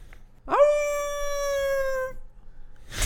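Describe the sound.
Someone imitates a spooky howl: one long, clear note that swoops up and then sags slowly for about a second and a half before fading, with a brief breathy rustle afterward.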